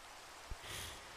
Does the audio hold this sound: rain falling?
yes